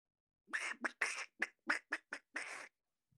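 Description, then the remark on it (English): A person imitates a goose, saying 'my dad is a goose' in goose talk, with a rapid run of about eight nasal honks of uneven length, loud, with no other sounds around them. “I will gladly tell you whatever you need to hear in goose. Like, I'll say my dad is a goose, but in goose.”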